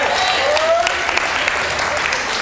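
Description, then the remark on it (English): An audience claps loudly, a dense, steady wash of many hands that holds for the whole moment, with a brief rising whoop cutting through near the start. “Like, are you clapping? Because I'm clapping if you clap, but I ain't clapping you.”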